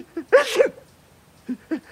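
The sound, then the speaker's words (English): A single loud sneeze bursts out after a quick breathy intake, followed by a pause and two small, faint sniffling noises. No one speaks. “are you sneezing again?”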